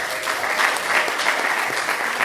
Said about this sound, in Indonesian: Indonesia itu masuk ke urutan nomor 4 startup digital di seluruh dunia, tepuk tangan untuk Indonesia.